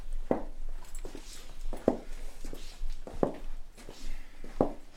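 Footsteps of a man getting up and walking out to the kitchen in his apartment, without crutches, on a prosthetic left leg: four or five distinct thumps at an uneven pace over a quiet household background.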